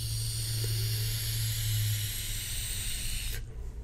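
A steady, airy hiss with a faint crackling sizzle runs for about three seconds over a low hum, then cuts off abruptly: a long draw on an e-cigarette with an updated sub-tank and a 0.6 ohm coil head set to 35 watts, loaded with Boilermaker Rivet.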